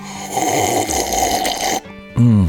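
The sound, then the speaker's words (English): A long, noisy slurp of a drink, rough and steady for nearly two seconds, then a brief pause and a short, loud voiced sound with a rising then falling pitch. “I can see that slurp, ….”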